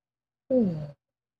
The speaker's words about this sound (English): A little yawn there.